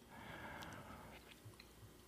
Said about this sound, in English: I just took a sip of water, so I just broke the another rule.